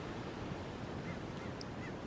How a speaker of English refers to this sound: The seagulls, they're high in the sky.